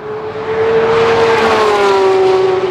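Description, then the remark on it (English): A Porsche 911 GT3 RS sports car engine revs hard and loud in track mode, a sustained rising wail with rich harmonics held at high RPM, shifting at 9,000 RPM, continuous with no talking. “Track mode, it shifts at 9,000 RPM in every gear. The noise in this car is absolutely spectacular.”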